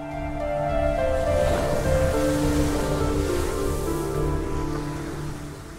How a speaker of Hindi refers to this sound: बूढ़ा राजा के साथ समुद्र के किनारे जाकर खड़ा हो गया। पूरा समुद्र चांदी सा चमक रहा था, ऊंची ऊंची लहरें उठ रही थीं।